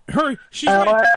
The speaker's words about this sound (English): your voice is going, look, because it's like in and out